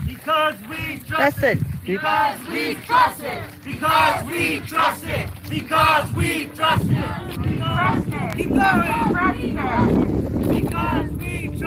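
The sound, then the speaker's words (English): A large crowd at a gathering in California chants in loud, rhythmic bursts of many voices, the repeated shouts pulsing steadily before blending into a continuous roar of cheering and noise toward the end. “And then the crowd started chanting.”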